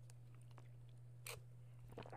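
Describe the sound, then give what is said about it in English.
A short slurping sip of coffee from a cup, a quick wet burst that sounds like a kiss, followed by a few faint mouth clicks, over a steady low electrical hum. “I like when I take a little sip from my coffee cup and it sounds like a kiss.”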